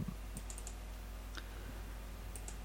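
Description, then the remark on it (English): A few sharp mouse and keyboard clicks tap out in an irregular rhythm, fairly quiet, over a low steady hum with no talking. “Just let me click this button and this button and this button.”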